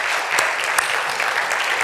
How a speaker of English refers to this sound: To all of our visitors, so glad to see you today. Let's give our visitors a good round of applause.